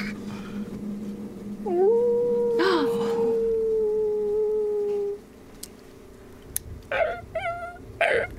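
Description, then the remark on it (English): A wolf lets out one long, steady howl lasting several seconds, then a few short, high whimpering yelps follow in a quick cluster. Fairly clear, with no talking. “Wolf.”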